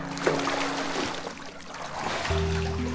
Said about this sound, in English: The king of the Lapiths laughed and made a show of hiding his eyes while Theseus disrobed and got into the water.